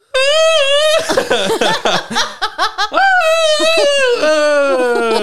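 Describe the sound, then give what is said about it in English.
A voice imitates the Tarzan jungle yell: a loud, high, sustained cry that breaks into a rapid warbling yodel, then rises again and slides down to a lower drawn-out note. “Now give me the Tarzan scream.”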